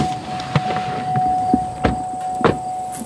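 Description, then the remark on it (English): A pickup truck's steady engine hum runs throughout during a ride to see working goats in Newbury, Massachusetts, broken by a few sharp door clunks and thumps, with no one speaking. “we hop into a pickup truck to see some goats at work.”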